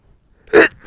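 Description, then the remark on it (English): A single loud sneeze, muffled as it is stifled into a shirt on a microphone, bursts out after a moment of silence, with a breathy rustle starting again just as it ends. “I did that into my shirt on the mic to give people the real experience.”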